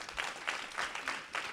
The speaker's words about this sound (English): Before we get to the questions, let's give it a round of applause for that.